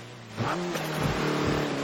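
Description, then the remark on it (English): Car windshield wipers swish back and forth in a quick, regular rhythm over a steady engine hum, with no talking. “You can get the wipers on the car.”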